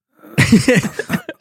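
A person imitates a dry cough: a quick series of harsh, raspy coughs, starting in a cluster and ending with a couple of short, separate hacks.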